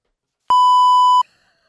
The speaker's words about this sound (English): That was an email. I forgot to turn my email off.